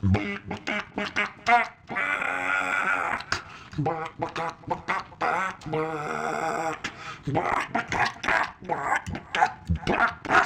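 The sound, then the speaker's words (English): A person stirring eggs vocally imitates clucking chickens, a run of choppy, nasal bursts with a couple of longer squawking stretches, loud, with no background sound. “It says you're stirring it up, the chicken's all bah, bah, bah, bah, bah, bah. So I like to kind of sing it for you.”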